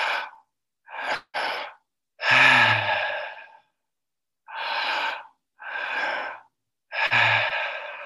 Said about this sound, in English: And we're going to continue breathing this way. Your mouth might get a bit dry, but that's normal. And try to allow your body to relax the feet, relax the legs, relax the arms and the face, and just carry on breathing.